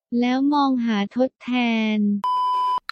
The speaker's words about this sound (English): At the beep, pause and then repeat.